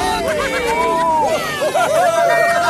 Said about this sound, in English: The tiny engines cheered and tooted.